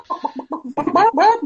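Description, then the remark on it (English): A person imitates a chicken clucking: a quick run of five short, rhythmic clucks, then a few louder, drawn-out squawking calls, fairly loud. “Hey, I'm chicken.”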